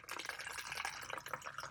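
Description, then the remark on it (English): Apple juice poured into a glass, a steady gurgling stream with a slight rising tone as it fills, fairly quiet and continuous, with no talking. “Do you want quite a bit or not? Yeah, it's a good portion still.”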